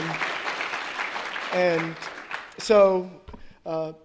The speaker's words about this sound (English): go ahead and stand up so everybody can welcome you and say hello and or clap.